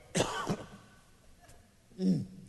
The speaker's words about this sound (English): I coughed while preaching. Oh, my goodness.